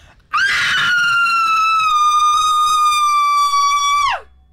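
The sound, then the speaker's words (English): A single loud, high-pitched scream held at a steady pitch for nearly four seconds as long as possible in an attempt to shatter glass, rich and piercing, before sliding sharply downward as the breath runs out. No glass breaks. “Take a breath and keep commit screaming.”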